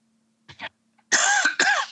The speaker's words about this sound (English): Hold on, I'm going to cough.